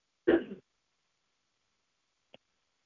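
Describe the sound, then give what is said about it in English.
A single short throat clear, a rough burst lasting about a third of a second, followed by silence and one faint tiny click. “When I have to clear my throat a lot when I'm doing these podcasts, let me just say, just to clarify,”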